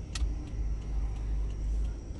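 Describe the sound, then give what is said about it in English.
A car's turn signal ticks in a steady, regular rhythm over the low rumble of an idling engine, with one sharper click at the start and softer ticks after. “I don't know if we can turn around though. Blinking.”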